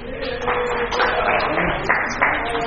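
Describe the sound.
A crowd applauds with dense, steady clapping that holds at an even level for a few seconds, with a faint murmur of voices mixed in.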